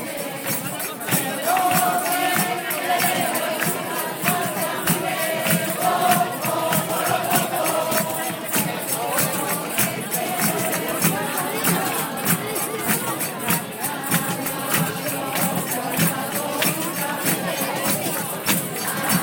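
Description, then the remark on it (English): A group of people sings together over steady, rhythmic beats of zambomba friction drums, with a constant babble of voices, recorded on a phone. The music stays loud and dense for the whole stretch. “Yeah, if you're lucky, I'll be able to take the recordings that we've made of the Zambombas off my phone and you'll be able to listen to them right now.”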